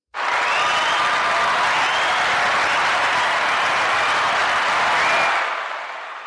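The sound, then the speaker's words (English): A dense burst of applause sound effect with scattered whoops, played from a RodeCaster soundboard, at a steady, loud level for about five seconds, then fades out quickly. “Yeah, I have to learn how to control that in my applause on my roadcaster, but I thought that was great.”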